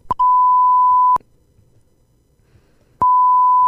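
Two loud, steady censor beeps, each a flat high-pitched tone. The first runs about a second, then after a near-silent gap of roughly two seconds a second beep begins and continues to the end.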